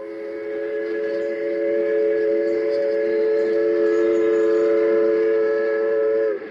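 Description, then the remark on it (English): A steam train's whistle blows in one long, loud, unbroken tone lasting several seconds, with a low rumble of the train underneath and no voices. “The Baltimore and Ohio Railroad was the major railroad route through that section of the country.”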